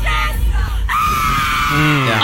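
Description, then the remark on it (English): A concertgoer at a concert screams song lyrics at full volume, shrill and strained, holding long high notes over a loud, noisy background for a couple of seconds. “But like screaming the lyrics to every song the entire time is to be there the entire concert, and this is what you got.”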